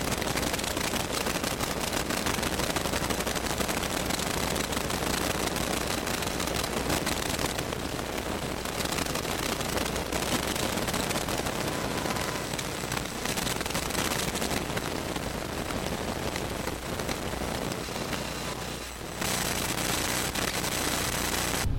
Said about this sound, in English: Call is just static.